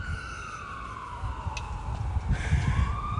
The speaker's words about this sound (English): Oh, there goes another ambulance. I hope that person feels good. I hope they're okay.